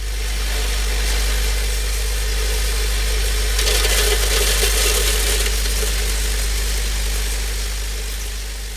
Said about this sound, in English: Meanwhile, metal containers for rolls of films, also called cassettes, join the assembly line from a cassette feed hopper. This is a loud vibrating tray that drops batches of cassettes to add them to the assembly line. This is what it sounds like.